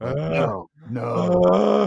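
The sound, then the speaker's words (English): Two loud vocal grunts, drawn out into groaning strains and separated by a brief pause, as a voice imitates straining effort; no words spoken. “And I think it's what bothers me is that, like, every 10 seconds, the ref just had a microphone in their ear and you just heard them grunting.”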